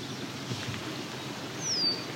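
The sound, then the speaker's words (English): A single thin, high call of an eastern kingbird slides briefly near the end over steady outdoor background noise by a culvert; moderately faint, with no talking. “There's an eastern kingbird here.”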